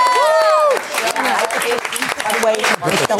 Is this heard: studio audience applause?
yes